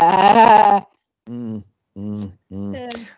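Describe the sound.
A person mimics a sheep with four bleating cries: one long, wavering baa followed by three shorter ones after brief pauses, loud with no other sounds.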